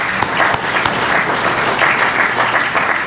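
An audience breaks into steady, sustained applause, many hands clapping at once in a dense, even patter that holds at a fairly loud level for a few seconds.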